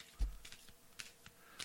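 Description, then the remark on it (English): A deck of tarot cards being shuffled, a quiet run of irregular papery flicks and taps with brief pauses between them, and no voices. “Do you want me to grab an Oracle deck, Dave? No, let's just have some fun here. Okay. I've never done this with my audience before. Okay. Shuffling them up for you, Human Carl.”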